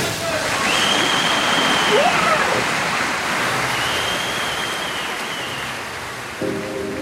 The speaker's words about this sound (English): We have a microphone at the bottom of the pool under the water. When the athlete goes under the water, we shift the perspective to just them and the underwater sound. You hear the bubbles. You get the complete sense of isolation